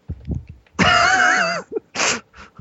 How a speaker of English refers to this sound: Loud. Muffled cough from the other room.